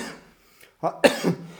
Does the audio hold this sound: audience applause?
no